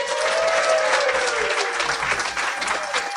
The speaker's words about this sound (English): If you guys enjoyed having Jeff on board with us by a show of applause, what'd you think?